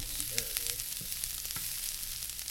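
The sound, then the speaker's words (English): Bell peppers and carrots sauté and sizzle steadily in a pan on low heat in a kitchen, a dense crackling hiss with a few clanks and scrapes as they're stirred, without talking. “We've got stuff sizzling away. Let me see if I can capture any of that on the mic.”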